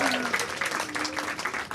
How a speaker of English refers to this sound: Everybody give a big round of applause to Miss